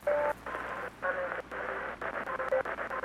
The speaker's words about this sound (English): So why am I still getting interference?